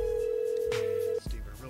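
A phone line ringing out as a phone call is placed: one long, steady ringback tone held for over a second, then it cuts off with a click over faint background noise.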